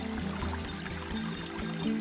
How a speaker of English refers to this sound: She goes into the bathroom and there is a sound of running water.